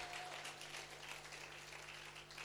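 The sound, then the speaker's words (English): A church crowd applauds a pastor in a steady, dense wash of clapping that holds an even level throughout, with a low electrical hum underneath and no voices. “Just give him a round of applause just for actually getting here.”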